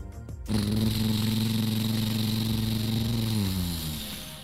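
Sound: lawn mower engine running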